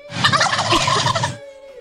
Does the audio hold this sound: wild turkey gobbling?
yes